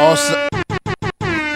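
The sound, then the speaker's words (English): A loud, blaring air horn sounds off in a rapid run of four short blasts, then launches into a longer sustained honk, brash with no one talking. “I just wanted to play the air horn for that.”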